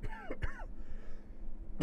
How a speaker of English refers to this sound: I had a cough break. Did you hear it? No. You missed it. It was a good cough, though. I enjoyed the cough.